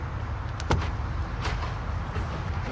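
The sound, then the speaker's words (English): A couple of sharp mechanical clicks as a car door is unlocked with a key, followed by a softer clunk as the door opens, all over a steady low background rumble with no talking. “You'll have to unlock it”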